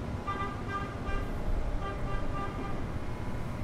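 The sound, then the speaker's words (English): A steady, heavy mechanical rumble fills the whole recording, with a thin whining hum on top, as an electric locomotive slowly backs onto a train bound for New York at Washington DC station, with staff around the locomotive making sure it connects properly. No one speaks. “And here comes the electric locomotive backing on to our train.”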